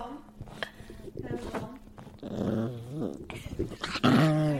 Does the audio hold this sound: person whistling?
no